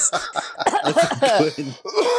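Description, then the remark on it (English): A person coughs in a few quick bursts while another person is talking, overlapping a voiced, talk-like sound that carries through most of the moment. “Sorry, someone was coughing while I was talking, so I didn't hear what I said.”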